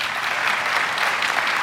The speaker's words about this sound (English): We're big on honor in our tradition. So would you clap your hands